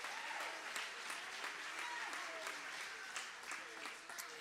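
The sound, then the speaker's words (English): An audience claps their hands in praise of the Lord, many hands producing a dense, continuous patter of sharp claps that holds an even loudness throughout, with no voices standing out above it. “Lord, would you clap your hands and praise him right now?”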